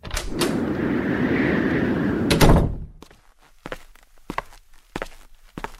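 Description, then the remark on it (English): A door rattles and clunks as it is unlocked and opened amid a few seconds of rumbling noise, then a series of distinct footsteps walks into the room, moderately loud, with no talking. “Thanks for unlocking the door and letting me into the room so I can join you in on this conversation of 2020 and how wonderful, or I guess not wonderful, it has been for us.”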